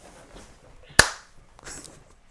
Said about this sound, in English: Good. That was a door.